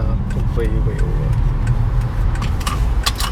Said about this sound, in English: Wait. I'm going to get some loud traffic sounds. Listen to the cars whizzing by.